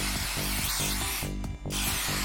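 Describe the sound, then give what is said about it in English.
The spray nozzle of a healing spray spritzes in loud, hissing bursts, with a brief break near the middle before the spray resumes. A steady, rhythmic low background runs underneath throughout. “With its intuitive spray nozzle and convenient price, Flex Heal is guaranteed to be the best thing in your handy haversack.”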